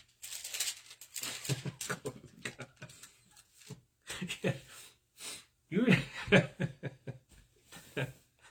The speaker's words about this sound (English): There's no greater sound than Bible pages turning.